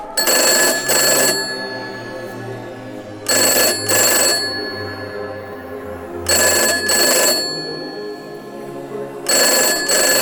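An old rotary landline telephone rings in four loud, trilling double bursts about three seconds apart, each ring a rapid metallic bell clatter with short pauses between, and no one speaking.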